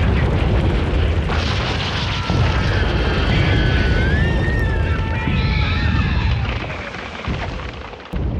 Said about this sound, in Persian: تمام اطرافش تبدیل شده بود به دود و آتش و خون. صدای مهیب انفجار تمام دره رو پر کرده. اونقدر همه جا رو دود گرفته بود که انگار داشتن تو دهانه یه آتش فشان حرکت میکردن.